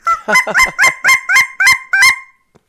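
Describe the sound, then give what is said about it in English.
A rapid series of about eight high-pitched, nasal goose honks blown on a miniature cackling goose call about the size of a chapstick, imitating cackling geese, loud, with a clipped, yelping rhythm before falling silent. “Oh wow, that's way higher than the normal honker call. Yeah, I mean, that's what cackling geese sound like.”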